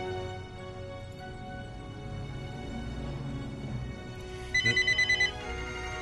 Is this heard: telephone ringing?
yes